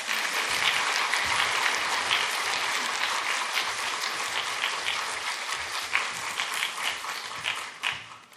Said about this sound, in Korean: 나오실 때 한번 크게 박수로 환영하겠습니다.